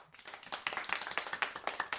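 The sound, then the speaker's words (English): An audience at Hill Valley High applauds to welcome two volcano experts, many hands clapping at once in a dense, steady patter of sharp, bright claps that holds at an even level for a couple of seconds with no voices. “So let's give a warm Hill Valley High welcome to Dr. Bradley Davis and Professor Christopher Maxwell, Jr.”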